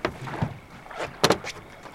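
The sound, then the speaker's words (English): Ambience aboard a boat: a low background of water and hull noise, with soft creaks and a pair of sharper knocks about midway. No one speaks. “Why don't we take a look around the boat?”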